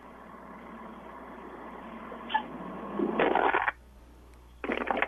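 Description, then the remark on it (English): A heavy garbage truck engine rumbles steadily while two loud bursts of crackling pops break out, the sound of bubble wrap being crushed under the truck's wheels as it drives over it, first longer, then a shorter burst. “That's what it sounds like when you drive the garbage truck over bubble wrap.”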